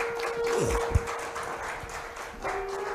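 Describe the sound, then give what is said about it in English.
An audience claps their hands in a dense, steady burst of applause that carries on throughout, with a faint sustained hum running underneath and no voices. “Give God a hand clap for them.”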